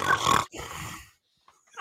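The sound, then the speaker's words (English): A voice imitates loud, heavy nasal breathing: two rough, snorting exhales, followed by a brief pause and a faint, short sniff at the end. “Loud and breathing out your damn nose.”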